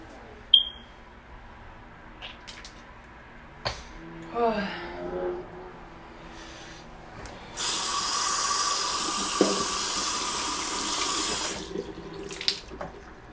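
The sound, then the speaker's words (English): A few clicks and a short burst of rhythmic scrubbing as someone brushes their teeth with a toothbrush, then a tap runs steadily into a sink for about four seconds before shutting off. “I've already brushed my teeth today too, so that's why I keep brushing them.”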